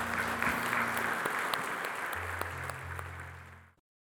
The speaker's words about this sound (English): Let's give the Lord a great big hand clap.